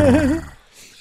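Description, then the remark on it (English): A person makes a short growling vocal sound with a wavering, rolling pitch, fairly loud, lasting under half a second before fading into quiet. “I'm just growling.”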